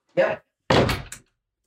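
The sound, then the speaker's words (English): A door is opened to let a dog out: a short clunk followed by a longer, rougher burst of rattling and scraping as it swings, then quiet. “And right out the door she went without any problem.”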